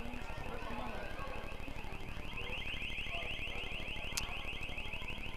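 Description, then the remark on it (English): A steady electronic alarm wails continuously at a high pitch throughout, fairly loud, with a brief sharp click near the end and faint background noise beneath; it is going off somewhere during a ball game. “Believe we got an alarm going off somewhere.”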